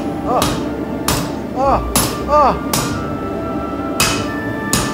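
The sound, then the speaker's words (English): A hammer rings against hot steel during forging in a steady series of sharp metallic blows, about six strikes spaced roughly a second apart, with scale popping off the hot steel, loud over a low shop rumble with faint voices. “It's that hammer. Why is it sparkle when you hit it? It's the scale basically that's popping rad on the hot steel.”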